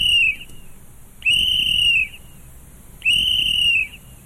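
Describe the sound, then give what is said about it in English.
A whistle is blown in three shrill, steady blasts, the first cut short at the start and the next two each lasting under a second, with brief pauses between them. “we were talking about a story, I think, out of Chicago last year, and they were recommending whistles.”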